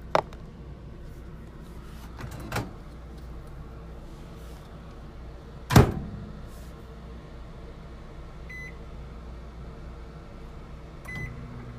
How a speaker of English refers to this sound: Okay, make sure you don't stand in front of that microwave because of the radiation, ladies. Men too, but y'all can get radiation. Alright, so that's 10 seconds.